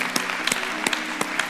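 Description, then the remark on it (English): A church audience gives the Lord a hand clap, a dense steady patter of many hands clapping with a few sharper claps standing out, moderately loud and without voices. “Well, if you love Jesus more than you love apple pie, would you give the Lord a hand clap today?”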